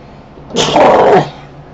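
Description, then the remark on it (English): A single sharp, loud sneeze bursts out, a quick breathy onset followed by a brief voiced blast, then quiet again. “And I'm going to sneeze again.”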